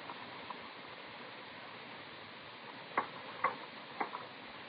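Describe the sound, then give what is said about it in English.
A few soft ticks from a kitchen clock, about half a second apart, surface near the end over a steady hiss. They are faint, and nobody speaks. “The clock in the kitchen said 8:30.”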